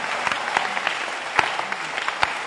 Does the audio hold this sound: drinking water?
no